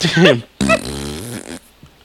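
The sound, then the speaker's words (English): A person makes a vocal fart noise: a short blubbery burst, then a longer, wavering raspberry sound with a buzzing drawn-out tail, fairly loud. “And you'd be like, fart.”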